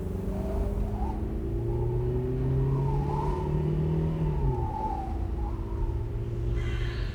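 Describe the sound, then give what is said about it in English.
A car drives fast along an empty desert road, its engine droning loudly and steadily with a pitch that rises and dips, a rough rattling texture riding under the continuous road rumble. No one speaks. “I hear a kind of rattling again. Should I stop and check if something's wrong?”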